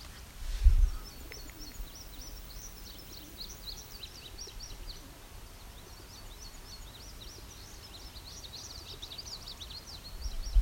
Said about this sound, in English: These guys are cooing.